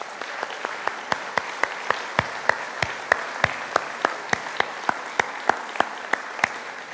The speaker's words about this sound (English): So we really appreciate you opening your homes up to be hosts to these wonderful chunk, and we'd like to give you a round of applause.